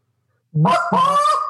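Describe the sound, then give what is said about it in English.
A goose call sounds a short, sharp cluck that slides straight into a longer, drawn-out moan. Both notes are loud, with no talking. “Okay, now follow a cluck by a moan.”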